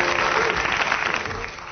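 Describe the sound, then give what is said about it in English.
An audience of a comedy panel game claps for the scorer, steadily in a dense wash of many hands, holding loud and even before easing off slightly toward the end, with no talk over it. “Oh, give her a round of applause, for heaven's sake.”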